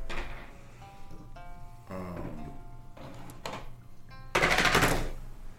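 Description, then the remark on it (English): Dice, including inspiration dice, clatter and rattle across a tabletop in several short bursts, ending in a louder, longer tumble before settling, with a faint hum in the background. “I'll use the inspiration dice as well.”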